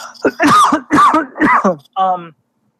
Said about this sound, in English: I'm going to cough here.